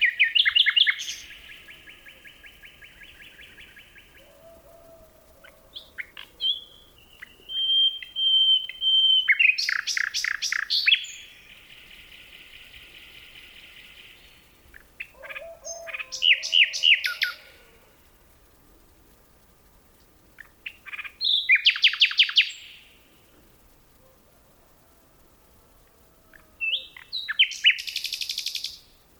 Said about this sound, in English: Phil Riddett recorded these two nightingales in a forest near Kent, England.